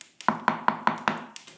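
Five quick, evenly spaced, soft knocks on a wooden chamber door, with a faint tap just before and after the sequence and no voices.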